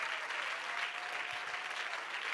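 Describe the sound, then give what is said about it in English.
An audience claps their hands unto the Lord in praise, a steady, dense wash of applause that holds at an even level throughout, with no voices standing out. “If you want to be a part of that, would you clap your hands unto the Lord?”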